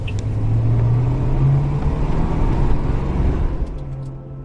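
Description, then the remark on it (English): A car rolls slowly through a trailer court, its engine a steady low rumble with a droning hum that holds at an even, moderate loudness for several seconds. No one speaks. “she had heard a car slowly cruising through her trailer court”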